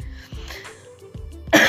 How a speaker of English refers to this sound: So yeah, sorry, I'm gonna be probably coughing through this podcast. I'll try to muffle it as much as possible.